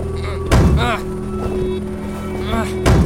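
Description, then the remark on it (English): Two heavy, booming bangs on a truck door, a couple of seconds apart, over a low steady hum, with muffled vocal sounds between the blows. “I don't think banging against the door is going to get us out of this truck.”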